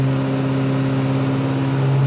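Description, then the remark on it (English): A truck engine drones loudly and steadily as the truck climbs a big hill during a test, a deep constant hum with a slight strain as it labours under load, continuous throughout with no voices. “Another big hill he's got to climb up, essentially. See how this truck holds up.”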